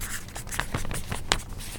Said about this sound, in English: I'm writing this down. Write it down. Right now.